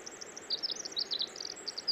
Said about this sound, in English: This is a bird called the winter wren. It may have been called this because its song heralds the end of the winter. In fact, they often sing when there's snow falling, when there's snow all over the ground. Listen to that elaborate, convoluted song